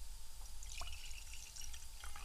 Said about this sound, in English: Okay, sorry. Good that you have a glass, because otherwise it would just sound nice if you're like, No, I poured myself another glass of wine.